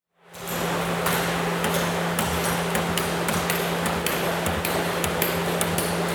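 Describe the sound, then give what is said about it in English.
Hammering on casks in the José y Miguel Martán cooperage in Huelva, as casks are made to be filled with sherry: a dense, continuous clatter of sharp metallic strikes and ringing pings at an irregular rhythm, over a steady low hum, with no voices. “The cooperage belonging to José y Miguel Martán in Huelva is a head-banging blur of activity, as cask after cask takes shape before being filled with sherry and left to season.”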